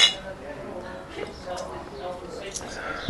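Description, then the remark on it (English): Pint glasses of cider, a Bath Ales Bounders cider and a Weston's Rosie's Pig cider, clink together in a toast, a bright knock at the start followed by a few lighter taps, with faint murmuring voices in the background. “I've gone for Bath Ales, a pint of Bounders cider. One of my favourite ciders, this one. Cheers, mate. Cheers.”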